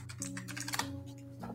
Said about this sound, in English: Lots of typing going on. So sorry about that.